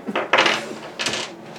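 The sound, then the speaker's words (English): Dice are rolled across a hard tabletop, clattering in two quick bursts of rattling clicks, fairly loud, with no talking; the roll comes up 17. “I rolled another 17 on the dice.”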